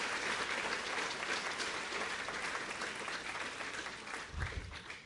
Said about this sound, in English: And so let's give a round of applause to both of you. Awesome job.